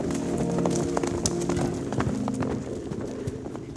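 A stallion and about a dozen mares gallop up a hill past patrol cars, their hooves pounding in a rapid, irregular patter at a steady loudness, with a low droning tone running beneath the hoofbeats throughout.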